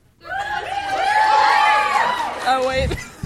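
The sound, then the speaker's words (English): A live audience erupts in loud, high-pitched screaming, many overlapping voices swelling together for about two seconds before tapering off into scattered yelps, screaming 'yes' when asked whether Albus and Rose will get married. “Do you think Albus and Rose will get married? If yes, scream.”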